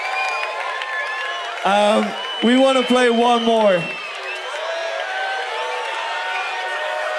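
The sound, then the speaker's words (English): A festival crowd at the Arcadia stage at Glastonbury cheers in a steady, dense roar that fills the whole clip, while a man's amplified voice briefly speaks over it. “Like, this is the biggest crowd we've ever played.”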